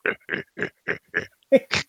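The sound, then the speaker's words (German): A person imitates the grunting of mating tortoises: about seven short, throaty grunts in a steady rhythm, fairly loud, with the final few sounding higher and more strained. “Sich vergnügende Schildkröten. Ach so, genau. Die kleinen Grunzerchen.”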